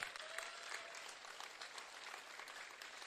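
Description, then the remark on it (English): A church audience giving God a clap of praise together, a dense, steady wash of many hands applauding for the whole three seconds, with no voices standing out above it. “Come on, if you believe it, I want you to give God a clap of praise right now.”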